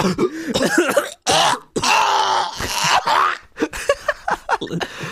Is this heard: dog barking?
no